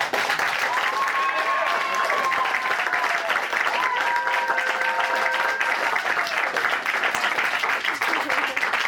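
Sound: audience applause vote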